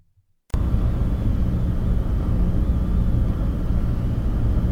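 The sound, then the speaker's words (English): After a brief moment of silence, a ferry's engine kicks in as it sets off on choppy water on the Sound at 6 o'clock on a gray, drizzling morning, with two cars and an empty school bus aboard; a loud, steady low rumble holds, with a droning hum and a broad wash of noise over it. No one speaks. “It's 6 o'clock on a gray, drizzling morning, and I'm on a ferry.”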